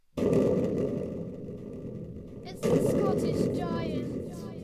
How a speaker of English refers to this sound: And just as Finn had finished, he heard thunderous booms coming towards the cottage.